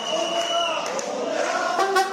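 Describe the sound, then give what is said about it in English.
A crowd of protesting rail workers chants together in the halls of the metro, many voices blending into a loud, steady, echoing roar with rhythmic rises and falls. “Chants from rail workers echo through the halls of the metro.”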